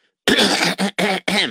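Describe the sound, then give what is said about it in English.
Someone clears their throat in four quick, raspy bursts, one long rasp followed by three shorter ones. The sound is loud, with no talking around it. “Okay, everybody's clearing their throats, and I'm clearing my throat.”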